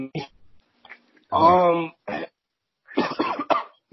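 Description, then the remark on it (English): A man coughs in several rough, sputtering bursts, with a strained, voiced catch in between, after a swig of beer went down the wrong pipe. “That was I took a swig of beer and it went down the wrong pipe. That was that cough, bro.”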